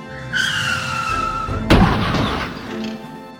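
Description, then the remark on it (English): A car's tires screech in a long, high skid for over a second as it swerves through a turn, then a loud crash as another car hits trees, followed by a rumbling, clattering tail of impact noise. “swerved the car, just barely making the turn. Street Boss's men crash into the trees”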